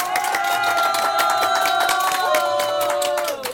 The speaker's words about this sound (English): what we will do on the Facebook page, we will now get the audience to applaud... And I want you to guess how many people were at the pod. So here we go. One, two, three.